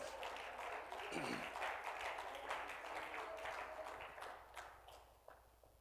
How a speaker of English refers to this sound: Oh, let's clap our hands and praise Him tonight.